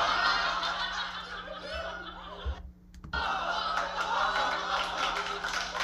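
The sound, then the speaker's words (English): A crowd laughs and claps steadily, a loud dense wash of chuckles and applause that drops out briefly for a moment before resuming just as strongly. “Stop the laughing and clapping.”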